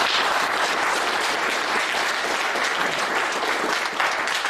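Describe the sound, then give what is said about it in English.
Sustained audience applause at a seminar, a dense steady wash of many hands clapping at an even, loud level throughout with no talking over it. “well, you've already got lots of claps,”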